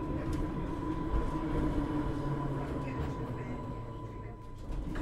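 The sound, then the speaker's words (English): A converted ex-London Underground D-Stock train rumbles steadily as it rolls in and slows at Ryde St John's Road station, its first stop, with a low mechanical drone, a faint steady whine and occasional clanks, heard from on board at a fairly constant loudness. “The train is now arriving at its first stop, which is Ryde St John's Road.”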